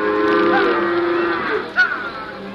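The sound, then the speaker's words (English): Cattle in Dodge City, Kansas, low in long, drawn-out moos that overlap as if from several animals, steady and fairly loud, with a brief sharper call near the end and no talking. “Dodge City, capital of the vast cattle and buffalo empire of the West.”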